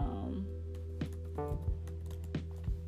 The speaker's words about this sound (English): I'm gonna give y'all this scripture because, and like I said, if you hear a clicking noise, that's me clicking, because like I said, honey, I'm not going to give you anything that is not factual.